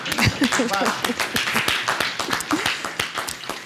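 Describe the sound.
Several people clap together in a quick, uneven burst of sharp smacks lasting a few seconds, with a few voices calling out briefly over the clapping.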